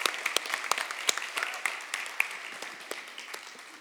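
audience clapping hands

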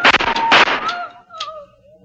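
gunshot

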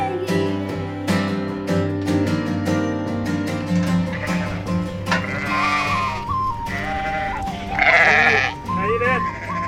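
sheep bleating

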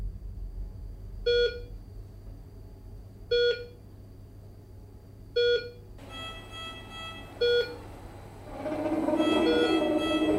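phone ringing

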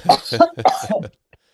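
cough

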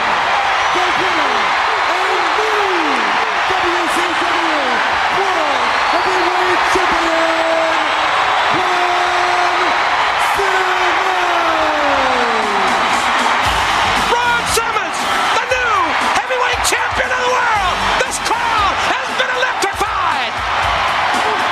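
arena crowd cheering wildly

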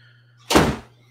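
door slamming shut

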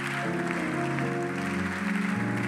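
audience clapping

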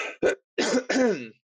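throat clearing cough

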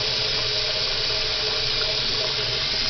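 water running

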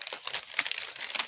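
paper being crinkled

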